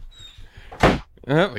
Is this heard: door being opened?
yes